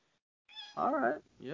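A cat named Dino meows loudly and insistently, wanting food: a rising, wavering call followed by the start of another, heard alone without any talking.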